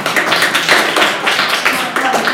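A scattered smattering of applause from a small student audience giving a show-of-applause vote, uneven claps at moderate volume for a couple of seconds with no voices.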